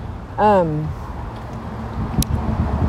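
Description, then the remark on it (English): Steady low rumble of heavy street traffic with cars fills the background while a pedestrian waits to cross the street, with a short tonal, voice-like sweep early on and a brief sharp click near the end. “I usually don't cross the street when there's this much traffic.”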